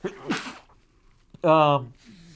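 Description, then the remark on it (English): A single sneeze, a little off-mic, with a sharp breathy burst, then a short voiced sound and faint talk after it. “Sneezed away from the mic, but you probably heard it.”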